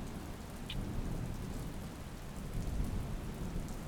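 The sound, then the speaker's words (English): Steady heavy rain hisses evenly throughout while low thunder rumbles continuously underneath, deep and rolling, with a slightly stronger swell near the end. No voices are present. “You can hear the rumbles of the thunder.”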